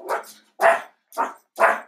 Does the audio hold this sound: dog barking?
yes